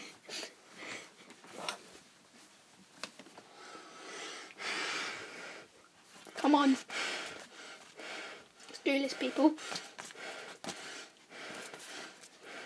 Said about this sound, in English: Stop breathing so heavily. Stop it.